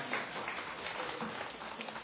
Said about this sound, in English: Aren't they good? Yeah, go ahead. Go ahead. That's all right. Clapping's allowed.